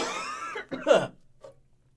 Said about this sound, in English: Whatever, I'm just going to cough.